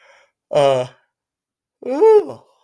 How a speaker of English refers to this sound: Sorry, Potluck Podcast listeners. That's a good yawn there.